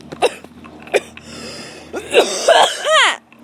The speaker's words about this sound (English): I feel like we have to get through the... the coughing and the bowl smoking part. It's like morning bowl and then converse, you know?